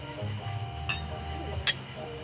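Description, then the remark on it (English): Glasses clink together in a toast to a bottle of Heaven Hill bottled-in-bond: two short, bright chimes less than a second apart, ringing briefly over a steady low background hum. “Well, let's cheers that, guys.”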